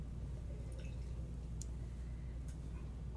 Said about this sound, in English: Do you want to rinse your glass? Yes.